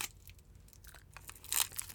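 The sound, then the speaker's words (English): A Hi-Chew candy wrapper crinkles and tears open, with a series of short crackling rips that build to a louder burst near the end. “Also, I'm going to eat this high chew.”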